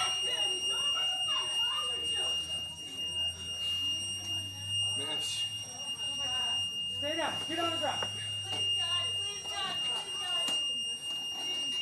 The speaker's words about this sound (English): And there's that buzzing right there. Yes, they asked somebody to call 911. And that buzzing right there is going to go on through the rest of the video right there.